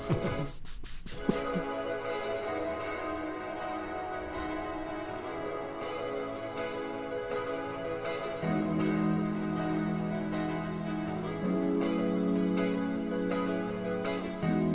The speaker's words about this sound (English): Is that ocean in the background? Or just white noise? Just white noise.